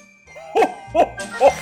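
Three evenly spaced jingles of sleigh bells ring out in quick succession, each a bright, shimmering burst over a faint background hum, with no voices.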